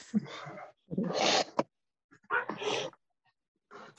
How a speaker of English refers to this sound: Do I hear barking?